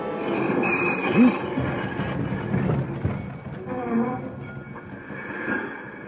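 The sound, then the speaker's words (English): A train with an engine, baggage car and coach rumbles heavily and steadily, with thin, high-pitched brake squeals rising above the noise at a few moments, the loudest swell coming about a second in. “I left the engine cab and had just reached the platform standing between the baggage car and the coach when there was a scream of brakes.”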